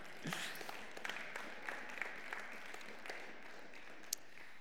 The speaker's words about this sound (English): Yes, cheer for that, man.